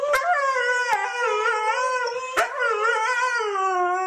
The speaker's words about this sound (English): But huskies do sing. It's a howling. It's a singing.